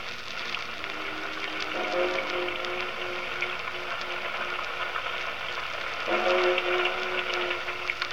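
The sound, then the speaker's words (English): Steady rain hisses evenly throughout, with a low droning tone swelling in twice in the background, briefly near the start and again toward the end. No one speaks. “How long do we have to stand here in this confounded rain?”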